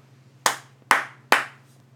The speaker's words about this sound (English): You going to clap again or something? No. Actually, yeah, I'm going to.